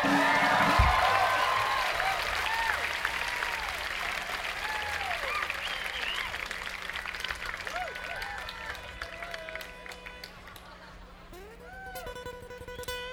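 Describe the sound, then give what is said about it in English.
A large festival crowd applauds a singer steadily for over ten seconds, a dense wash of clapping with scattered whoops and cheers rising above it, gradually tapering near the end. “…, ladies and gentlemen.”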